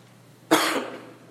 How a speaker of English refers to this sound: I helped you out with that when I moved the microphone away from the cough.